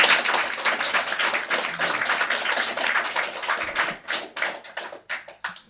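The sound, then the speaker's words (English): A crowd at Radio Laria, a monthly spoken word gig at Open Studio in Northcote, applauds the poets with dense, steady clapping that thins out toward the end into a few scattered, separate claps. No one speaks over it. “Give them a massive round of applause.”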